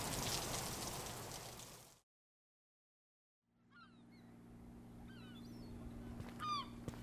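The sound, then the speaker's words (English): Summer rain falls with a dense, steady hiss for about two seconds, then cuts to silence. A quieter outdoor scene follows, with a low hum and scattered bird chirps. “Let's get in, and then we can figure out what to do when the rain lets up.”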